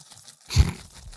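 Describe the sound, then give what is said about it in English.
Coins and keys jingle in a pocket in one short, rustling burst with a soft low thump, over in about a third of a second, with no voices. “I always have change in my pocket.”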